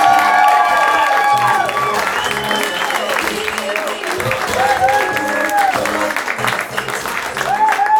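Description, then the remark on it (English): Loud, sustained audience applause at a storytelling show, welcoming the first storyteller, with cheering, whoops and a few whistles rising over the dense clapping, continuing steadily for the full eight seconds without a break. “And keep that applause going for our first storyteller”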